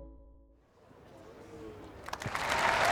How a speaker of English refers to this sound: But now comes the cheer for Tiger Woods. Taps it in and listen to the applause which rings out here on the 18th as Tiger Woods departs the scene, maybe for the last time, in an Open at St Andrews.